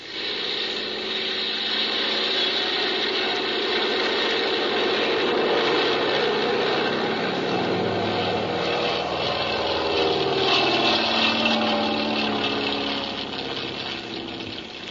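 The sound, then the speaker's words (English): A small propeller plane's engine drones steadily and loudly as the plane takes off, rising slightly in intensity as it powers up, with no voices over the continuous rough hum. “Well, I guess we can take off.”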